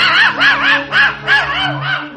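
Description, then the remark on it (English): A dog named Wolver barks while retrieving a duck, a quick, steady run of high, yelping barks, roughly eight of them in a row, loud and alone with no talking. “Oh, good. Wolver's got him. Here he comes now. Good boy, Wolver.”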